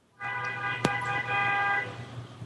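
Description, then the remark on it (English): A car horn blares in a sustained honk over a low rumble of passing vehicles, with a sharp click partway through; busy street traffic outside. “That's real traffic. Yeah, that's real traffic.”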